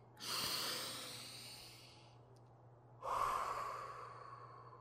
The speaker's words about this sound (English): Now I begin to control my breathing.